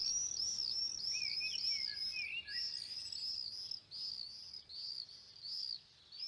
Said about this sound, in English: Friends send me birdsong recordings from London and elsewhere. They are singing louder under lockdown.